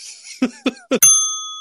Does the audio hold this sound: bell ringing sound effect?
yes